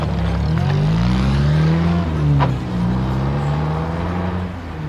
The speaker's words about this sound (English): Mr. Hayes called out to me from the car. I jumped in and we drove away.